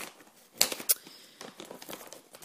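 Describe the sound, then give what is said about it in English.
Crinkly rustling of a Llamas-brand snack food packet being handled, with irregular bursts of crackle and a couple of sharper crunches, no voices. “There'll be a bit of rustling here.”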